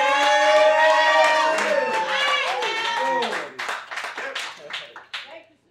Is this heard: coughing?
no